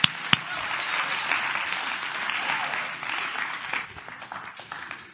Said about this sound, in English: Oh, come on, clap your hand to the Lord and give Him praise.